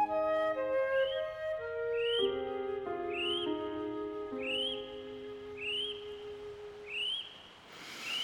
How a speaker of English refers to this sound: Well, my Peach Cove sleep all alone may have been the best yet. Kiwis whistle hooting in the dark.